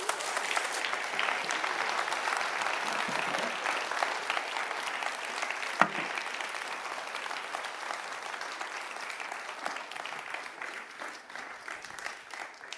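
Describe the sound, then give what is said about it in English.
An audience applauds after a sermon, clapping steadily in a dense wash of many hands sustained at an even, moderate level for the whole stretch, with no voices standing out and a slight thinning toward the end. “they applaud like that after every sermon preached.”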